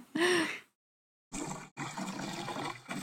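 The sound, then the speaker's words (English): A short breathy burst, a pause, then an old boat engine running steadily while the boat sits in the water at the dock, giving off a loud, rough, watery rumble with a brief break in the middle. “That is the old boat sitting at the dock.”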